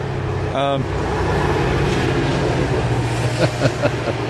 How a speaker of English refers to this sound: although there's been an occasional train going by